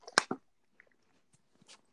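Wet mouth noises of someone drinking water: a loud slurping gulp at the start, then a few faint swallowing clicks and a soft final slurp, with no talking.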